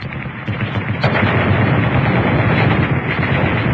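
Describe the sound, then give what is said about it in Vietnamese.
Loud, rapid rattle of light machine gun fire in an ambush in front of a vehicle, around 11 at night on a long deserted road with forest on both sides: a shorter burst followed almost immediately by a longer, sustained one, dense, with no voices. “Bất chợt, 2 loạt trung liên nổ ròn rã phía trước xe.”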